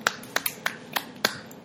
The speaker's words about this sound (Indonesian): Tepuk tangan dulu, tepuk tangan.